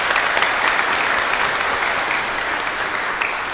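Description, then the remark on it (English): A crowd claps steadily in sustained applause for the fathers present on Father's Day, a dense, even patter of many hands holding at a fairly loud level for several seconds without voices. “Let's just give them all a round of applause.”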